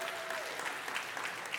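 An audience applauds steadily, dense overlapping claps forming a continuous wash of sound at moderate level, with no voices standing out.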